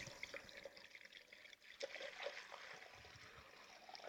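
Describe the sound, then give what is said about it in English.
Water is poured into a 2- to 2.5-quart casserole dish of beans in a steady trickle and splash that runs continuously for about four seconds, with no one speaking. “Fill that, put a little water in there.”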